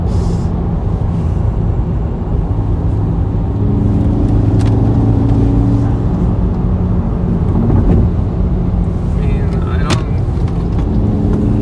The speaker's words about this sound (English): She pulls strong. Damn, it's a cool car.